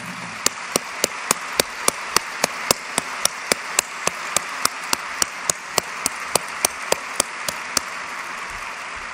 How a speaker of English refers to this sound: And if Chuck Huggins and his wife Donna would stand up, I'd love to have you give him a real well-deserved round of applause.